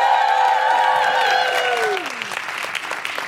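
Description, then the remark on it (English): An audience gives a round of applause: dense, steady clapping throughout, with a sustained cheering voice sliding downward in pitch over the first two seconds before the clapping continues a little softer. “Just give her a big round of applause.”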